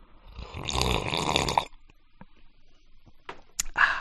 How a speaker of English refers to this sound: I need another sip of my drink.